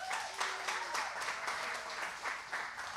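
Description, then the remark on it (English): Steady applause from a church audience for the people who came up to speak, dense overlapping claps filling the whole stretch at a moderately loud level, with a few faint voices calling out underneath. “Clap it up for them, please.”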